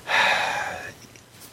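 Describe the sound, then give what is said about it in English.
A person imitates a seal with one loud, rasping, honking bark that lasts under a second and then trails off, followed by a short sharp click. “I wanted to do a seal impression.”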